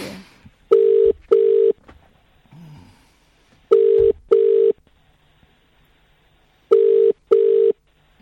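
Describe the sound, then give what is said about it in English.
A telephone line tone sounds in paired electronic beeps as someone places a call: two short steady tones, then a pause of about two seconds, repeating three times, clear with no talking. “I just want to call someone. Hang on. Just calling someone.”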